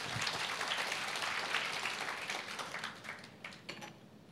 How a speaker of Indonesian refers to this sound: Boleh kita berikan tepuk tangan buat Tuhan.